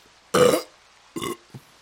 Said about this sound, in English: Oh, that was good. Oh, that was a little girthy. Had a little bit of movement to it, but that was a good fucking burp. That was a really good burp.